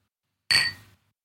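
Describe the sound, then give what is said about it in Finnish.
Two glasses of freshly poured Somersby clink together once in a toast, a bright ring that fades quickly into silence, with no voices around it. “Hei, ja sit kippis.”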